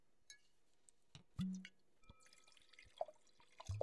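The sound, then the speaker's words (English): Quiet splashes and drips of wine being poured into a glass, with a few bright glassy clinks scattered through. No one speaks. “Now, our favorite part, let's pour it up.”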